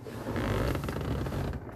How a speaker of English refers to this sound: Sorry about that. I know you heard that squeaking.